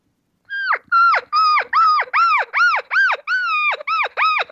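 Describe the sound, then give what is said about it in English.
A cow elk, leaving the bull she was with and coming to cow calls, mews rapidly, a quick run of about ten high, nasal, arching calls with rich harmonics, each dropping sharply in pitch at the end, loud and steady with no talking. “They meow. They mew very fast when they do it.”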